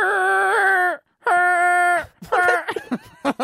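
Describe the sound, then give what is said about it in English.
A voice imitates a car horn with two long, steady, buzzy honks, each about a second, separated by a brief pause, followed by choppy vocal sounds. “I was doing more of a honk.”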